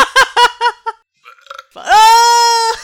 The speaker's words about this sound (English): Does it make a satisfied sound at the end? A little burp.